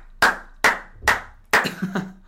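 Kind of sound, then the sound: crowd, clapping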